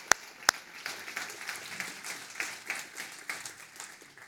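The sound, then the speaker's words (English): An audience at a Mother's Day church service bursts into applause for the mothers, opening with two sharp, loud claps before settling into a steady, dense wash of clapping that continues throughout without any talking. “Let's give one more clap for our mothers.”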